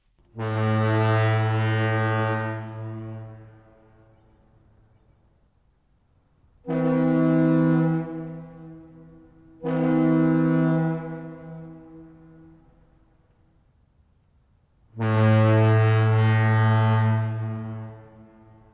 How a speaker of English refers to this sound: We have a San Francisco foghorn. We played it earlier, but let's just all listen to it kind of quietly together, and we'll just center ourselves right on, you know, this San Francisco foghorn.